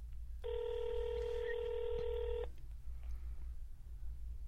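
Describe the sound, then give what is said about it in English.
A single steady telephone ringing tone sounds for about two seconds over a low background hum, then cuts off, heard down a phone line while calling the pet shop Pet Cuisine and Accessories and waiting for an answer. “I'm getting it ringing.”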